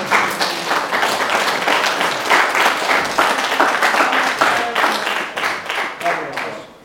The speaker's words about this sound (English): So I thank you. I'll give you applause. Thank you.